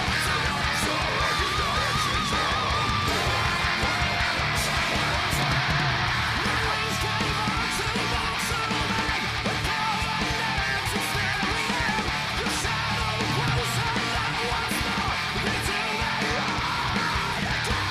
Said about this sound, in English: This is a nasty high scream I did at the end.